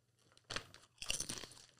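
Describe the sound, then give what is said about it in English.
Two loud crunches of someone biting into crispy ridged sour cream and onion style potato chips, each a sharp crackly burst with brittle snapping detail, separated by a short pause, no talking. “Ooh, that was a good crunch. I could hear that in the headphones.”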